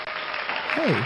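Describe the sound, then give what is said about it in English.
A short burst of steady, crackling studio audience applause, with a voice calling out briefly over it near the end. “Applause from the studio audience.”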